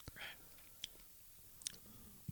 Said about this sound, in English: Let me take a sip. If you like green apple stuff, you'll like this. It tastes like green apple stuff.